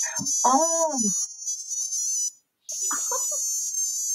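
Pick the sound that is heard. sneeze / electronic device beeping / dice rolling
electronic device beeping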